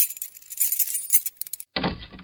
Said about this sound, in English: Guess you'll have to help me with this door. I can't get it open. Let me see it. Well, of course you can't, silly. It's locked. Where are those keys we found in the desk? Here they are.